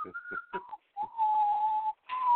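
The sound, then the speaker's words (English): Someone whistles a short song melody, a few quick notes giving way to long sustained pitches, with brief breaks and some breathy noise between phrases. “I've been whistling that song the whole day.”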